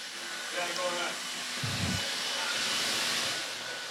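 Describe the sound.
A vacuum cleaner runs steadily in a suite at an arena, a constant loud whooshing hiss that fills the whole stretch, with a faint voice briefly audible underneath early on.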